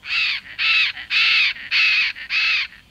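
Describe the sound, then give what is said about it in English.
Five loud, harsh squawking calls from a bird in the Amazon rainforest, evenly spaced in a steady rhythm, with no talking and only faint background between them. “It's a lush world that scientists and nature travelers explore by boat, where some of the world's most iconic birds find fruit in the trees or perch at the water's edge.”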